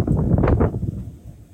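Strong wind buffets a microphone while climbing the tower of the PAGASA Giwan weather station on top of a hill in the Philippines in July, a loud, continuous low rumble, with a brief gusty surge before easing slightly toward the end.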